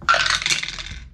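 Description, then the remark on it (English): A quick clatter of dice tumbling across a hard tabletop, a dense burst of bright clicks that rattles for about a second before settling, fairly loud with no talking. “I can tell that my dice are purposely trying to play games here, because I rolled in the 10s, then in the 20s, now I'm hitting the 30s.”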